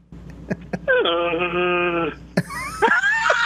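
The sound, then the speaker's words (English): A person attempts a Chewbacca Wookiee roar and falls short: after a couple of sharp breaths, a steady, nasal, honking tone holds for about a second, then breaks into a higher, strained, wavering groan. “Sound like a Disney foghorn.”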